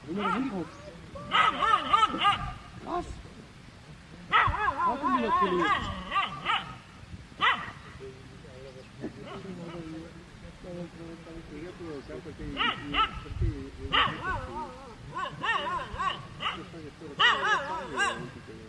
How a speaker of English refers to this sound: Now, this is somebody's dog.